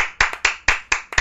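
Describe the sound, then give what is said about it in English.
Five crisp hand claps in a quick, steady rhythm, close and fairly loud, like a single pair of hands applauding with no voices. “So yeah, Grax is absent, but I mean, a major round of applause for Grax.”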